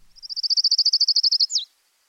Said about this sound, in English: Kalima warbler. It's got a trill that kind of slows down toward the end, and then it has a very distinctive abrupt end.